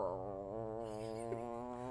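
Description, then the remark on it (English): A person imitates the low, guttural growl of a possessed girl in a retold horror story, holding one rough, buzzing, dog-like tone steady for about two seconds with no words spoken. “You sound like a dog. Thank you. Very good. Very guttural.”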